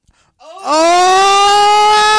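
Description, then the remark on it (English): A single voice lets out a loud, sustained scream into a microphone, sliding upward in pitch at the start and then holding one strained, steady note until the end. “I was screaming into the mic.”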